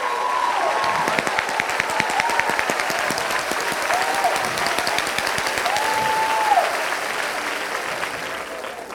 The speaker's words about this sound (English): You might as well clap your hands and join us or eat their dust, because they're going with it.